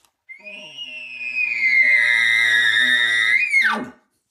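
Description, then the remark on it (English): A voice imitates a mosquito with a thin, steady, high-pitched lip buzz driven by the diaphragm, held for about three seconds, then it abruptly swoops down in pitch and cuts off as the buzzing is dropped off. No talking. “Then we're going to go ahead and use our diaphragm and we're going to make this little tiny mosquito noise, high-pitched noise.”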